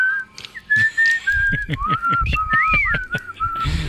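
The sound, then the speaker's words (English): Someone whistles a wavering, wandering tune, the pitch sliding between notes, while sharp clicks and knocks tap irregularly underneath. “Whichever way the suspect moved, the boys followed, like fucking velociraptors, whistling and whittling as they went”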